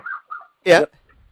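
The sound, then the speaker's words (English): A small Jack Russell terrier named JJ gives two soft, high whines followed by a single loud, sharp yap, then quiet. “It's a dog. It's a Jack Russell dog.”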